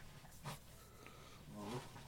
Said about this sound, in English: My dog is freaking out.